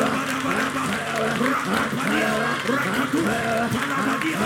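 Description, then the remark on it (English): A crowd claps hands in a dense, continuous patter while many voices shout "fire" and cry out together over it to release the fire, steady and loud throughout. “Shout fire, clap your hands and release that fire.”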